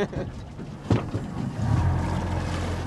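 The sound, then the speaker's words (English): A small boat chugs slowly between white poles toward a black torpedo-shaped floating device, its low engine rumble steady beneath soft water sloshing and a brief bump near the start, with faint wind noise throughout. “slowly navigated between the white poles, taking us over to one of the black torpedo-shaped floating devices.”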